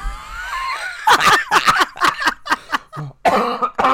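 A burst of repeated harsh coughs, about six or seven in quick succession, loud and raspy, following a soft wheezy breath, with a final strained, throaty cough at the end.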